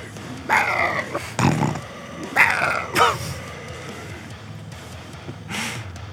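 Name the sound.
dog barking and growling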